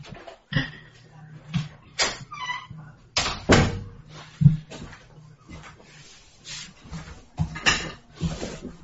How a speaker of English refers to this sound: I hear her on the steps. My door will open in a second.